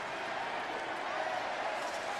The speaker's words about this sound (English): And the crowd chanting Andy Pettitte here just miles from his hometown of Deer Park. What a way to end it.